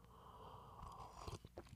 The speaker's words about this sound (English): Excuse me for sipping coffee in your ears.